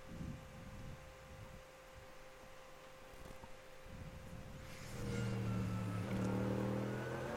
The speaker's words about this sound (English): That wonderful, thunderous V8 engine for car number 2, Philip Ellis, driving the Get Speed Performance Mercedes.